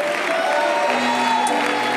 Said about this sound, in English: Let's give the Lord Jesus a great big hand clap of praise.